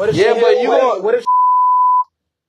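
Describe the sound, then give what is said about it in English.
A man talks briefly, then his voice cuts off into a single steady, high-pitched censor bleep covering profanity that holds for under a second before silence. “What if you gotta bleep that.”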